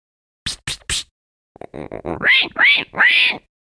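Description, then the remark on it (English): Three short, rough snorts, then a run of quick pulsing grunts rising into three loud, squealing oinks from a pig called Puggles, with no talking over it. “Bad pig!”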